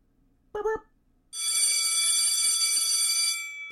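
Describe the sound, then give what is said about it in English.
A brief tonal blip, then a school bell rings steadily for about two seconds, loud and shrill with a bright metallic buzz, before cutting off. “School bell ring.”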